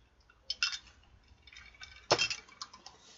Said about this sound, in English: But you know what? For now, let's clink it up. Nice.